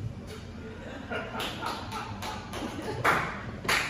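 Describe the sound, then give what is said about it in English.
Several sharp hand claps ring out at irregular intervals, roughly half a second apart, the last two the loudest, with a low murmur of voices underneath. “That's great, laughs and claps.”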